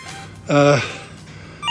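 A single short electronic ring from a telephone, a brief buzzy tone that sounds once and quickly stops, clear against a quiet background.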